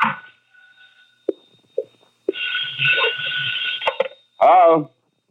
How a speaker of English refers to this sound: I left the shop a little after 11 and went to my apartment to call in a report on this phase of the deadlock. My phone was ringing when I got there.